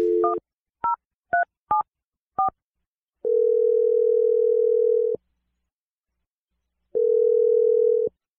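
A quick run of touch-tone dialing beeps, five or six short dual-pitch tones, followed by two long steady ringback tones separated by a pause of about two seconds. No one speaks.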